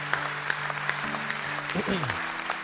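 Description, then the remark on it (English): A church audience applauds steadily for a couple of people in the room, a dense wash of clapping with occasional sharper claps. A sustained low tone runs underneath, and briefly bends up and down in pitch near the end. “Hey church, can we just give a round of applause for a couple of folks in the room?”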